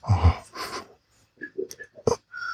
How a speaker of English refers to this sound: Oh, I love sniffing that hole too, man.